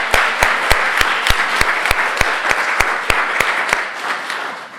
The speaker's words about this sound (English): So will you join me in acclamation? That means clap your hands and give thanks for the people who will serve.